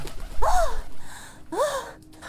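Two quick, warbling coo-like calls, each wrapped in a breathy, fluttering rush like wings taking off, fairly loud, apparently a voice imitating birds cooing and flying away after being brushed off someone's shoulders with a branch.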